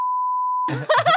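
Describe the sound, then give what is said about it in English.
A steady, loud censor bleep, a single pure tone held for about two-thirds of a second, cuts off abruptly as a person's voice begins speaking. “Put a big beep over that, and people will think I said something really bad.”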